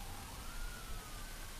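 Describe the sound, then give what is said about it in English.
A police siren wails faintly, its slowly shifting tone drifting over a steady wash of low traffic-like rumble and noise, with no one speaking. “You hear the sirens in the background.”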